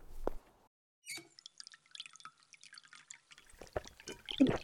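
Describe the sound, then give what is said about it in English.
Water drips and splashes irregularly in a bathroom, with a brief quiet gap before a busier run of patters and small splashes toward the end. No one speaks. “Yes, water.”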